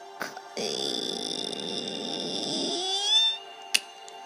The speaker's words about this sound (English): He tried the handle and it worked. It opened. And as he slowly opened the giant pink door to Bubble Mansion, it creaked.